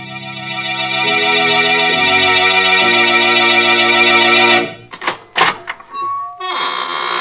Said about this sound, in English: This is your host of the Inner Sanctum, welcoming you again through the squeaking door for an hallucinating good time. Why am I smiling? But I always smile when I open the squeaking door on Tuesday nights.